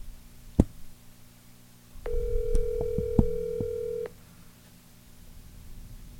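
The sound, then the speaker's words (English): A steady electronic phone tone sounds for about two seconds, fairly loud, with a few sharp clicks over it and an isolated click just before, as a dropped phone call is being reconnected; no one speaks. “John's phone call dropped out. We're going to get him right back on here.”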